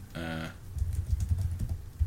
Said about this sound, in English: I'm going to Google it right now. This is me typing, everybody.